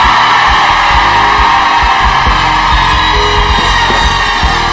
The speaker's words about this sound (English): Shout your craziest amen you've ever shouted.